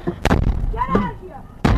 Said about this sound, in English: That's the door being kicked.